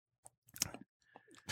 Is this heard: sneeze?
no